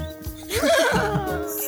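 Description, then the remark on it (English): A person imitates a horse's whinny, a quavering, high-pitched neigh that rises and then trails off, loud, lasting under two seconds. “Can you give us a little whinny”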